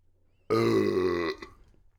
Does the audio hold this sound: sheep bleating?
no